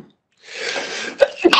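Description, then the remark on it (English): A single sneeze, with a breathy inhale building up before a sharp burst, followed by a couple of quick exhaled catches. “excuse me. Bless you.”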